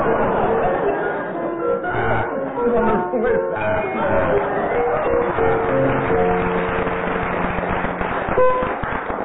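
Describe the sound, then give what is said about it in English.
A sustained round of applause from an audience, indicating that Barry Cryer and Graham Garden dressed the doll first; dense crackling clapping that stays steady and loud for about nine seconds, with some cheering and voices mixed in. “Well, that round of applause indicates to you that Barry Cryer and Graham Garden appear to have dressed the doll first.”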